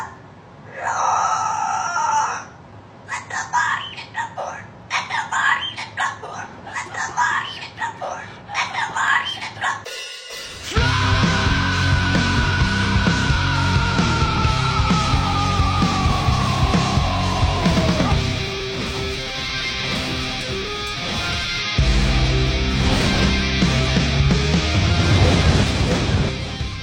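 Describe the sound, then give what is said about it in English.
A cockatoo, bought from a seller on Craigslist, screeches a song in loud, raspy, high-pitched bursts with short gaps between phrases, then a loud, dense heavy rock track takes over for the rest. “I just bought a cockatoo from a guy on Craigslist, and it keeps on making these noises.”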